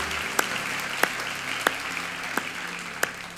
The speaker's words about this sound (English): Let's give them a hand of welcome and applause.